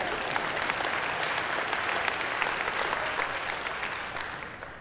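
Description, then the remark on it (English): A crowd of people applauds steadily, a dense wash of clapping that holds strong for several seconds before gradually tapering off near the end. “You can clap. Go ahead.”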